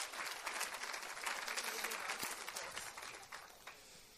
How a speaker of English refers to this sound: So could you put your hands together and give a warm round of applause to the hottest member of staff at Gray Center?